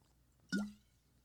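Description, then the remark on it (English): A single wet gulp as someone swallows a mouthful of water from a glass into the microphone, a short plopping sound with a brief low, rising tone that fades quickly, heard on its own with no talking. “Can you swallow in the microphone with a glass of water, please?”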